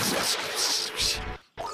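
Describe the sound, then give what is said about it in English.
A video game's gold spider enemy, a Gold Sculptula, gives off a dense, scratchy rattling that pulses steadily for over a second, cuts out briefly, then starts again at moderate loudness. “Oh, yeah, and you hear that noise right there?”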